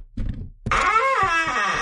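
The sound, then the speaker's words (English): A few muffled knocks thud against a door, then a loud, wavering moan-like vocal sound takes over and holds to the end. “I've got a knock at my door here.”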